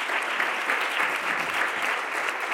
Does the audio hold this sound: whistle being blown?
no